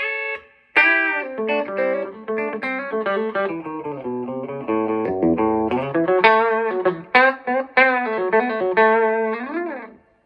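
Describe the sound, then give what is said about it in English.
A Les Paul electric guitar on its bridge pickup, played in a chicken-picking style: quick, snappy, twangy notes and short runs with sharp plucked attacks, a sliding bend near the end, played alone with no talking. “You can almost chicken pick.”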